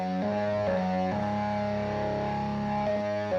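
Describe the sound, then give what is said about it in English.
A heavily distorted organ holds thick, buzzing sustained chords, shifting between a few harmonies with a gritty, saturated tone that stays loud throughout; no voices are heard. “And we crunch that organ to hell.”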